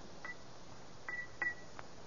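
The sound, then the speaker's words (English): Light taps on a rose crystal bell in a study, three of them spaced irregularly, each giving a brief, thin high-pitched ping that dies away almost at once. The sound is faint, with no voices. “in his study, he tried once more to make the strange bell of rose crystal ring.”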